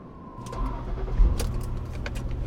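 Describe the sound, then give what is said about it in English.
A car engine cranks with a brief starter whine as the ignition is started, then catches and settles into a steady, throaty rumble with a rev, with no one speaking. “I started the ignition and it revved into life.”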